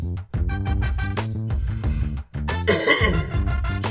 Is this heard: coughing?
yes